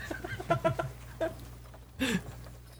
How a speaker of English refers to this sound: Chickens.